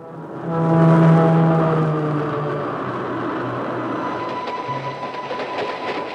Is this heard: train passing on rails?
yes